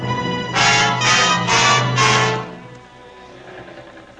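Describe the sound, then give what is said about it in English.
A scrambled radio code transmission, picked up on a homemade radio set aboard a ship bound for Murmansk, with the words scrambled: four evenly spaced bursts of harsh, hissing noise over a steady low hum, then a quieter crackling tail as the signal fades. “That's not static. That's jumble code.”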